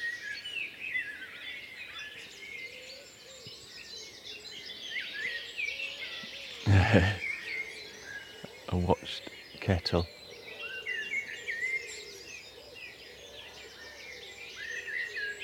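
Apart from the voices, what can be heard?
blackbird singing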